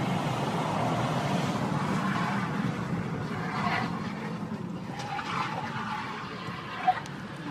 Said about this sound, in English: So there's some road rage shit going on. This guy's driving by in a big truck and he's flicking off the person filming, and then this happens.